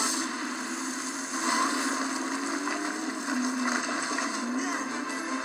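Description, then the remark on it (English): A voice imitates a car engine with a steady, buzzing rumble that holds for several seconds, its low pitch wavering slightly, with a breathy, noisy edge throughout. “That was my car noise, did you like it?”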